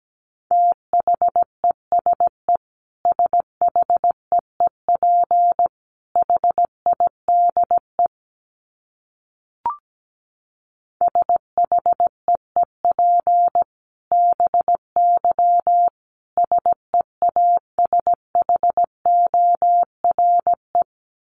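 A steady mid-pitched beep keyed on and off in quick dots and dashes, Morse code at a brisk 17 words per minute, with a short silent break and a faint click partway through.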